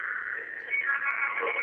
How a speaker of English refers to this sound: Is this really going on the tape? That's kind of weird, this echo function.